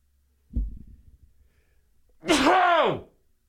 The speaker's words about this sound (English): Hang on, I got to sneeze.